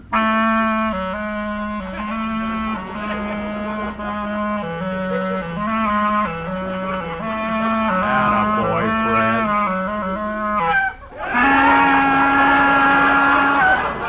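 A clarinet, played as a new act, plays a short, lively melody of sustained reedy notes with rich harmonics, moving up and down in steady phrases, then ends on a brief pause and a final held, brighter note.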